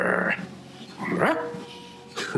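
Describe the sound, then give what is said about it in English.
A person imitates a dog, giving three loud barks spaced about a second apart, each a short gruff yelp with brief quiet between them. “That's what I should have done on the Camino, I should have barked at them.”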